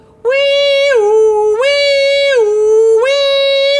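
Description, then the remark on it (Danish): A loud two-tone siren of an emergency vehicle with blue flashing lights wails steadily, switching back and forth between a lower and a higher pitch about every three-quarters of a second, with no voices. “Af sirener? Ja, af sirener.”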